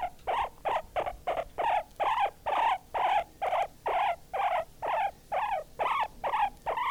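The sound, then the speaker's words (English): A guinea pig squeaks in a fast, steady series of about sixteen short, high-pitched whistling calls, each rising and falling, loud and alone with no talking. “That's the guinea pig.”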